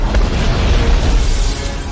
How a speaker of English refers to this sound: We are. There was just a huge explosion. We're in the middle of an argument, and all of a sudden, all hell has broken loose.